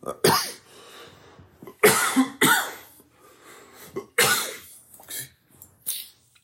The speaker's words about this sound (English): Excuse me. I know I normally have a bad cough when I'm doing these podcasts. I don't know why. I don't know what it is about the room where I record, and I don't even record in the same room, but I apologize for that.